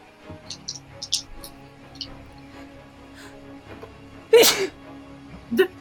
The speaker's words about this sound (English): Bless you.